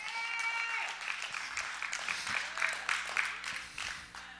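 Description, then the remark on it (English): Applause from a church audience giving God a hand clap of praise, a steady wash of many hands clapping with a few sharper claps standing out, sustained for several seconds along with a faint high tonal ring. “If there's anybody that believes that today, I dare you, give God a hand clap of praise.”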